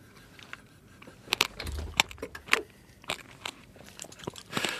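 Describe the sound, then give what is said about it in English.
Crisp crunching of passion fruit seeds being chewed while eating the fruit, a rapid irregular series of sharp cracks and wet chewing sounds over a few seconds, with no talking. “You can hear the pips crunch.”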